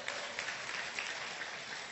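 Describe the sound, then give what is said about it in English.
A crowd at a church claps steadily to applaud married people, a dense wash of many hands with no pauses across the whole two seconds, moderately loud. “Anybody who is married in here, you deserve to be applauded.”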